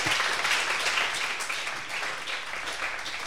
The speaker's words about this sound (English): Can we just have a little round of applause for our thought for the dayers?